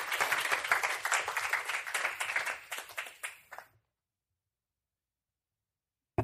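An audience applauds to welcome a student speaker, with dense, overlapping claps for a few seconds, fading out quickly into silence.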